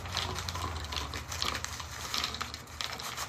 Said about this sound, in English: We're out of Coca-Cola, so I had to get Cherry Coke, which I've never had it in Cherry Coke before, so I'm excited to try it. But you just pour the peanuts in. Oops. Oh, oh.